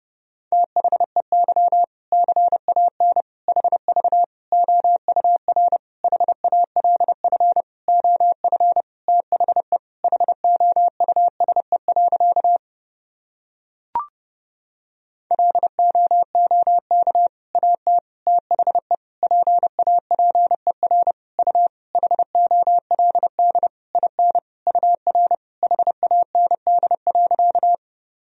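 Fast Morse code at 30 words per minute: a single steady mid-pitched tone keyed in quick dots and dashes. Two long runs are split by a short silent pause with a faint click, and no voices.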